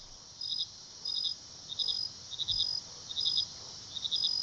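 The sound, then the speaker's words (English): Crickets and forest frogs chirp in a steady rhythm, short pulsed trills repeating about every half second over a quiet, faint background hush, at night in a forest. No voices are present. “Only slight moon and starlight trickle through the canopy, and the trio has forgotten the sound of their own voices, replacing them with the chirps of crickets and forest frogs.”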